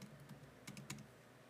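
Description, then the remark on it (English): Quick clicks of typing on a computer keyboard, several keystrokes in a loose burst, fairly quiet with no voices. “My computer's so loud with the typing”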